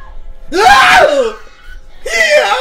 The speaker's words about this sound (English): Her screams sound like pigs.